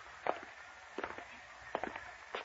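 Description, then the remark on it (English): Slow, evenly spaced footsteps, about four heavy steps each with a soft scuffing follow-through, walking at an unhurried pace with no voices over them. “Keep walking. Turn in the next door.”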